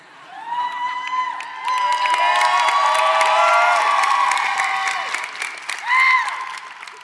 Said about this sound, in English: Still, it's nice to hear it. Wouldn't it be awful if they didn't applaud?